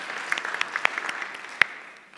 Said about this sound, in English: Thank you also to those who undertook the decorating of the Christmas tree. It looks magnificent, and that can get a round of applause.